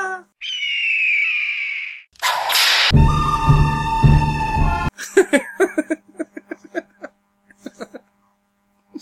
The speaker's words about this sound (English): I hear like a hawk screeching with a whip, and then like a whaa.